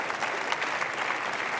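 A crowd applauds steadily, a dense wash of many hands clapping at an even, fairly loud level with no break, and no one speaking over it.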